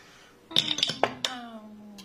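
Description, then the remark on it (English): Dice clatter across a hard tabletop in a quick burst of sharp clicks, then settle with a faint ringing rattle, rolled for an intelligence check. Fairly loud, with no talking. “Would you roll an intelligence check”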